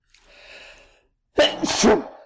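A soft, drawn-in breath is followed by a single loud, explosive sneeze, on its own, with no talking.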